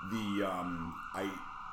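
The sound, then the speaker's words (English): An ambulance siren wails with sweeping, gliding tones, fairly faint and continuous in the background, with a person's voice mixed in. “That's an ambulance.”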